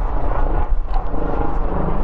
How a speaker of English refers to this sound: Can you hear the helicopter going over me?